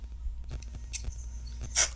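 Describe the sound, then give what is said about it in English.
An excited puppy at play lets out a couple of short, high-pitched yips, spaced apart over a quiet background with faint scuffling and no one talking. “The puppy was excited, so I called so you could watch him play.”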